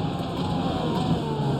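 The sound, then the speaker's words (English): A race car engine roars loudly as the driver brakes at the end of the back straightaway into Canada corner, a dense, steady growl with a rough low drone filling the whole moment, with no one speaking. “Down the back straightaway here into Canada corner. Lay it on the brakes.”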